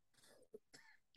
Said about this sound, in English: She's having a coughing fit